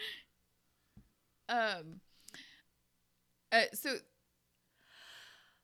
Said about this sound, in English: What? Oh, you're yawning. Yawning. Sorry.